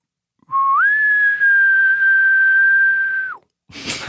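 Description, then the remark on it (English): A person imitates a far-off elk bugle with a long, thin whistle that rises, holds steady for nearly three seconds, then drops away, followed by a brief breathy burst. “This is an elk super far away.”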